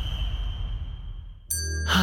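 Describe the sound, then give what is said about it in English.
A bell rings out suddenly after a stretch of low, murmuring background noise, its bright, layered tones landing loud, with a second strike following quickly near the end. “Well, every time a bell rings, a parent has just talked to their kids about underage marijuana misuse and how it can harm a healthy, growing brain.”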